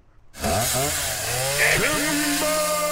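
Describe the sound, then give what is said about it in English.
A chainsaw sound effect used as a transition: the engine roars to life after a brief quiet moment, revving up and then holding a loud, steady buzzing drone for a few seconds. “Said transition, and then automatically just voom, chainsaw happens.”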